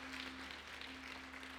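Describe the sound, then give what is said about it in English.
A church audience applauds steadily, giving God a round of applause and praise, a dense wash of many hands clapping at an even level for the whole stretch, with a faint steady hum underneath and no voices. “If you do, put your hands together and give God a great round of applause and praise.”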